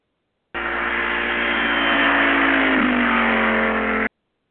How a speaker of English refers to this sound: To the car. All right, the fast car.